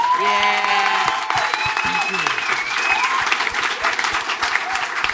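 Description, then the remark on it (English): A crowd breaks into steady, dense applause, a loud continuous wash of clapping with a few whoops and cheers rising above it throughout, an audience applauding three guests. “Yes, and guys, round of applause for our three guests.”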